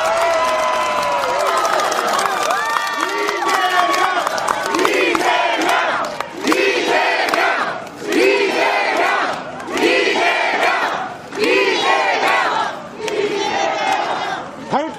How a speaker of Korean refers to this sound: 이런 이재명을 위해서 큰 박수 부탁드리겠습니다.